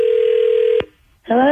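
A steady, loud telephone dial tone hums for under a second, cut off by a sharp click, then a short silence before a voice starts speaking on the line, as B98.5 radio hosts place a call.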